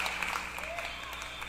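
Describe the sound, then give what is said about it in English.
A short burst of applause sound effect played on a show for a phone caller: dense, steady clapping at a moderate level with a faint sustained tone running underneath, lasting under two seconds. “Yes, it's applause for Mike.”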